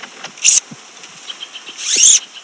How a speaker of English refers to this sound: Cicada madness.